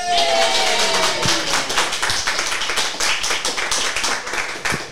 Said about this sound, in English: Yay! Excellent. Everyone clapped on command. Fantastic.